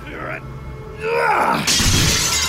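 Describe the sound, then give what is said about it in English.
After a brief strained vocal sound, a pane of frosted glass shatters with a sudden bright crash as a chair is hurled into it, followed by a sustained spray of falling shards that continues to the end. “I pick up a chair and hurl it at the glass.”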